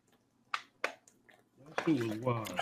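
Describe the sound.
Someone drinks from a plastic water bottle: two short, crisp crackling clicks from the bottle and a few soft wet swallows, then a man starts talking over them.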